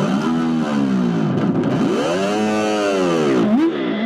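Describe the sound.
A person imitates a bear growl with a loud, sustained, raspy rumble of the voice that swells and dips in pitch for about four seconds, ending with a couple of quick upward swoops.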